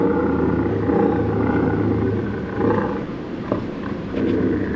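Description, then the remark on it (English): A bobcat called Bob the Cat, recorded with the help of the Sonora Desert Museum, growls and yowls in a low, raspy, sustained voice that runs for nearly five seconds, swelling louder a couple of times without pausing. No one speaks. “Oh, yes, there's bobcat out there, and will be, long after we ourselves are long gone and forgotten.”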